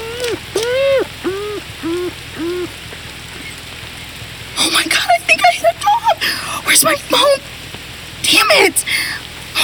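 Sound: rain falling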